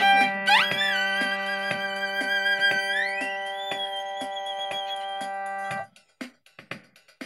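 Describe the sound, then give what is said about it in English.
A violin holds one high, sustained bowed note for several seconds, sliding up in pitch twice, with faint regular ticks underneath, then breaks off into a few scattered small noises. “what better way to use your violin talent than to just have you play a single note over and over again”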